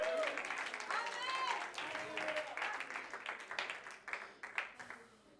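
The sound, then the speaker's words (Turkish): A church audience applauds the Lord in a dense, steady wash of clapping mixed with shouts of hallelujah and cheering, then the applause thins into a few scattered, separate claps near the end. “Bir 10 saniye Rabbi alkışla.”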